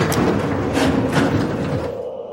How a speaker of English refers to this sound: No, let's go check out that freight elevator first. It'd save us a lot of time if it's working. Let me get that safety door open.